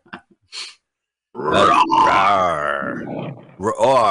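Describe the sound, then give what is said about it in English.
A loud, rough roar of Leo the Lion in a movie intro rumbles for about two seconds and tapers off, followed by a shorter growling burst, with a few faint short sounds just before. “Roar. Please stop sticking your finger up my ass, says Leo the Lion.”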